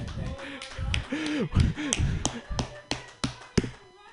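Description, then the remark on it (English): A steady run of sharp, slow claps, about nine in roughly four seconds, from an audience at a comedy show, rings out while voices talk and exclaim underneath. “You can't walk out when we're clapping.”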